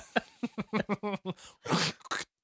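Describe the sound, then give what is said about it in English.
A voice imitates gargling mouthwash: a quick run of throaty, bubbling pulses, then a harsh breathy rasp and a short final burst, all fairly loud, with no speech. “he invented the language for the Wookiees when he was doing his nightly routine and he was gargling mouthwash. Yeah. Who like, gargles like that?”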